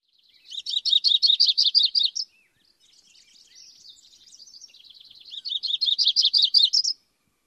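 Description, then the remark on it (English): A Myrtle yellow-rumped warbler sings two bright, rapid trilled phrases, separated by a softer, quieter warbling passage. The song is clear, with no voices. “So one more time, the variations on the yellow-rumped warbler song. The first two are Audubon and the third Myrtle.”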